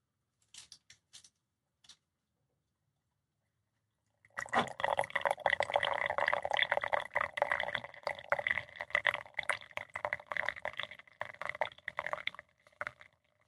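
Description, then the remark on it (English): A few light clicks and taps, then about eight seconds of steady water from a Cuisinart pouring into a glass decanter, with a resonant filling tone, before the stream stops. “Pouring over. Pouring. I'm replacing the decanter.”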